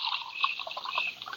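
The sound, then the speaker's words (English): Coffee being poured into a cup: a steady, bubbling stream of liquid lasting just over a second, fairly soft, with no voices over it. “More coffee”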